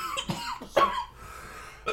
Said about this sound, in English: incessant coughing. I don't know what. Like I said, it's been bad all day. I apologise.